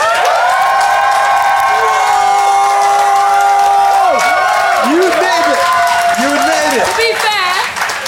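An audience claps and cheers loudly and steadily for about eight seconds, voting by applause for the side they think made the best case in a debate, a dense wash of applause topped by many high, sustained shouts and rising and falling whoops.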